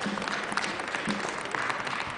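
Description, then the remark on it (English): An audience at the last chapel service of the fall 2010 trimester at Nazarene Bible College claps steadily, a dense, even patter of many hands sustained at moderate loudness throughout, with no voices standing out. “The fact that you're clapping means that you're still glad to be here.”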